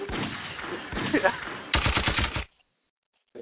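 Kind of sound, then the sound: sound effect, gunshot sound effects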